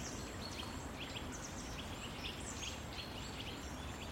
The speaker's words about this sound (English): Winter is normally really, I think of it as totally silent for birds, but there's so much bird noise here. You can't really call it song.